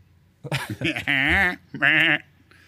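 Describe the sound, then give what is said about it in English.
A person imitates a sheep, giving a few short vocal bursts followed by two long, wavering bleats with a quavering pitch, fairly loud. “It was supposed to be a sheep.”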